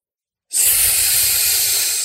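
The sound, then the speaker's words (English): A loud, steady sizzle kicks in abruptly after a short silence and keeps hissing evenly as circles of jalebi batter are poured into hot frying oil in a kitchen, with a faint low bubbling underneath. “The hot oil sizzled as Ma poured circles of batter into it.”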